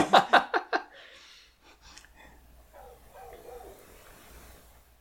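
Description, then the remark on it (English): A dog named Flesh Ripper lets out four quick, loud barks in a rapid burst, then falls quiet, leaving only a faint low murmur and soft background noise. “Oh, here comes my dog, Flesh Ripper.”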